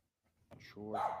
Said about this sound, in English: Oh yeah, maybe it's there's a dog barking. That's why I took the audio out. There was a dog barking in the background. All you heard was that dog bark.